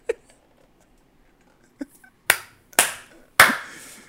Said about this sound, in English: You get some claps, man. Look at that. Thank you. Clappity clap clap, sir.